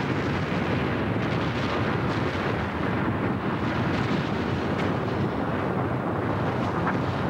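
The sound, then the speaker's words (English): The volcanic eruption of Mount St. Helens, Washington, on May 18, 1980, an explosion bursting out from the mountain's north face after an earthquake, roars in a loud, dense, unbroken rumble, deep and turbulent throughout, with rough crackling texture riding on top and no voices. “Twenty-five seconds after the earthquake hits, a huge explosion bursts out from the north face of Mount St. Helens.”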